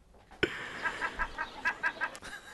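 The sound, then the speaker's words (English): A seagull call sound effect: a quick series of sharp, nasal squawks after an abrupt start, the cries repeating rhythmically and fairly loud against a quiet background with no one talking. “Yeah, I love that seagull noise.”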